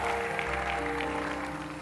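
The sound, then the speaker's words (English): An audience claps and cheers in a dense, steady wash of applause that fills the whole moment, with a low sustained musical hum running underneath. “Come on, clap your hands and scream like I'm talking to you.”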